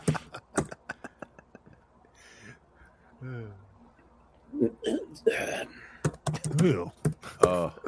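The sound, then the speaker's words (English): Rapid clicking of a computer keyboard as a man tries to log in, bursts of sharp keystrokes continuing while he talks and groans in the background. “Oh man. The typing.”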